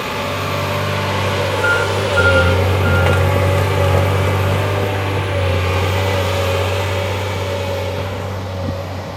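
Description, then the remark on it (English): A heavy diesel tree-felling machine drones steadily as it fells trees, its deep engine hum constant throughout, with a faint repeating reversing beep pulsing in the mix. “Just show you how the machine falls the trees.”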